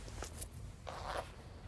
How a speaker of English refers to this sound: You reach for the zipper of your trousers.